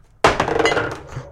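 A knife knocked over on a table: a sudden sharp thunk followed by a quick, clinking rattle of several small knocks that fades within about a second, with no voices.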